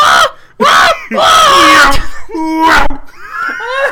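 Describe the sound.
A voice imitates screaming Titans in several loud, strained bursts, the pitch bending and sliding in a Doppler effect as if sweeping past, with brief gaps between shrieks.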